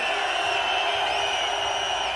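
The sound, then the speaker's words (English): A festival crowd of at least 1,500 people, asked to scream on a count of three, screams and cheers in one continuous, dense roar, loud and steady throughout with no pauses, and a high whistle rises briefly above the din near the end. “So on the count of three, that amount of noise is not really happening, so blow your heads off, scream your heads off.”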